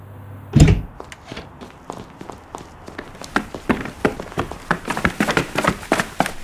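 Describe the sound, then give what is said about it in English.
A door bangs open with one loud, heavy thud, then a quick run of hurried footsteps and knocks follows, growing busier and louder toward the end. No one speaks. “Do not burst in like that!”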